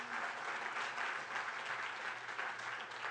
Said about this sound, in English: Come on, can y'all give a hand clap for that meeting?